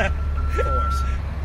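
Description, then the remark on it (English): A truck coming in, its deep engine rumble idling while a single sustained high-pitched backup beep sounds over it, with a faint voice briefly audible in the background. “we've got a truck production resource group coming in here, so we'll take a minute.”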